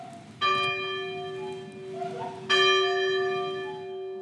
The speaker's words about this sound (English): Along with the grounds, the trails, the college building, there's also a restored Presbyterian church with working bell.